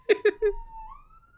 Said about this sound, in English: Oh, ambulance. That's ambulance. Sad.